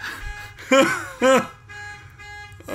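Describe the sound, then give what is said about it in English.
An alarm sounds in two loud, rising-and-falling tonal bursts in quick succession, each lasting about a quarter second, over a faint steady hum. “Alarm.”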